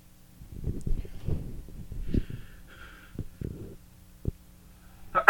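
A sudden, loud sneeze bursts out right at the end, after several seconds of soft thumps, snorts and breathy handling noise.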